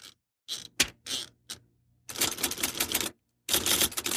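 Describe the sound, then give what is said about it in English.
Typewriter keys clack in a quick, uneven burst of separate strikes, then speed into a dense rattling flurry of typing with a brief pause, with no talking. “So I hope you enjoy the episode, and, well, cue the typewriter noise!”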